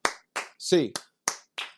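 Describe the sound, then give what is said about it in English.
A quick series of eight sharp, crisp handclaps in a steady rhythm, a UCLA 8-clap counted out one to eight, each clap short and bright, with a brief voiced shout overlapping one of the early claps. “It is a somber one, though, so we will have an 8-clap to end this one.”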